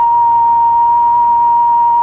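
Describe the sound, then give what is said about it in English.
A steady, loud electronic tone holds a single mid-high pitch for about two seconds without wavering, the signal transmitted by WHAS to switch on tornado warning receivers during a tornado warning for part of Kentuckiana, with a faint hiss beneath it. “WHAS now transmits a tone to activate special receivers.”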